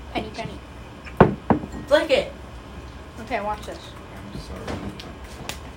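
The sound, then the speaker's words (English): A penny is flicked for a coin toss: a couple of sharp metallic clicks, then a brief bright ringing tone as the coin spins, with faint murmuring voices. “Oh, the penny.”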